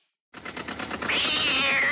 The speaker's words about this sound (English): That's a nice meow. I do feel like that cat meow might have been reused from 101 Dalmatians, because I feel like I almost heard the puppies barking in the background.